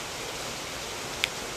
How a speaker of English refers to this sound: I hope this rain isn't too loud for this podcast, but it is coming down.